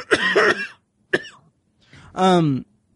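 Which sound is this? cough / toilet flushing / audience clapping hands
cough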